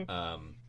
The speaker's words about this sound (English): Bless you. Sorry, go ahead. No, I said bless you. It was a cough.